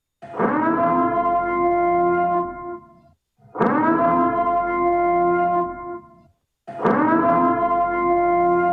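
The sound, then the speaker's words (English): A loud siren sound effect played from a soundboard blares three times, each long, steady, horn-like blast lasting about three seconds with brief gaps between. It plays alone with no voices. “The siren has been put on.”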